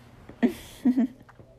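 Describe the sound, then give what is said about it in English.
A quick sip of a drink, with a short soft slurp followed by a couple of muffled gulps in a quiet setting. “Let me take another sip.”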